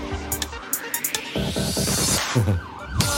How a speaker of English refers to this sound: Got some sirens going off in there. Don't panic, people, we're fine.